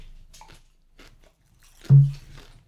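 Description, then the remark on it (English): Crunching as a salty chip is chewed: a few short, brittle crackles in quick succession, followed by one louder, duller bite near the end. Nobody speaks. “Little chews.”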